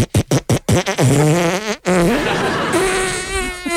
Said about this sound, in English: Thank you to everyone who played ….